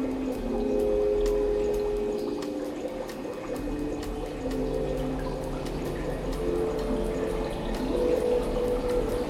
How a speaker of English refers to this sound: But then the sound of the pumps, the bubbling, seemed to swell, to surround him, and he found himself underwater again,